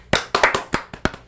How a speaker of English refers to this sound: then I think don't think it's too early to say congratulations to Ferrari for winning this year's championship. Let's clap it up.